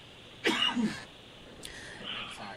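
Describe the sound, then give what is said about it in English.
A quick cough bursts out in two short pulses, followed by a faint breathy rustle as the sound settles back to quiet. “I had to cough really quickly.”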